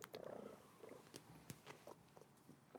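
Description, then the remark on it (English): A pet raccoon purring softly while held over the microphone, a low fluttering rumble broken by occasional sharp clicks and snuffles, with no voices present. “That was a trash panda purring.”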